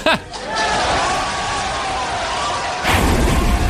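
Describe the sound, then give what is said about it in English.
A heavy prison door slams shut with a loud, booming impact, followed by a sustained, ringing metallic roar and a second burst of noise near the end. “That's the prison door slamming.”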